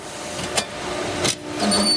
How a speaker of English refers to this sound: record pressing machines are basically all antiques. They're fussy and they break down